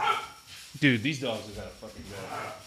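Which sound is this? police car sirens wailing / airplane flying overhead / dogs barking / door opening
dogs barking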